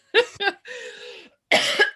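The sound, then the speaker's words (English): A few harsh coughs: two quick hacks, a strained voiced rasp, then another loud, raspy cough burst. No other sound around them. “I'm quite tired right now. Mostly because of this cough I've got.”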